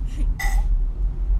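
A single low burp rumbles for over a second, with a brief brighter, throaty burst partway through before it trails off.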